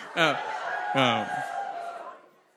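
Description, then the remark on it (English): An audience cheers and whoops to vote in a rapid-fire take-it-or-leave-it game, with two loud shouted bursts rising out of a sustained crowd roar that gradually fades away. “Then you have to hold up your card and cheer if you want to take them.”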